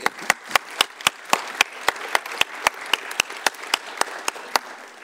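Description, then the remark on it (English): An audience applauds steadily throughout to welcome speaker Earl Palmer, a dense wash of clapping with one sharp clapper keeping a quick, even rhythm on top. No one speaks. “Here to introduce us to the subject, will you join me in giving a big round of applause to Earl Palmer?”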